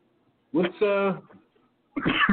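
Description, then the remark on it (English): A person coughs and clears their throat: a rough, voiced hacking burst, a short pause, then another harsh cough. “Yeah, I have a cough like as soon as I get on, right?”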